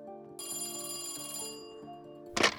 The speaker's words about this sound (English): But then the phone rang.